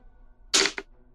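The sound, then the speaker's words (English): Dice, rolled for damage in a game, clatter briefly across a surface in a sharp, bright burst of rattling, followed by one quick final click as they settle. No voices. “Roll your damage, oh, my friend. Clickety clack. The dice attack.”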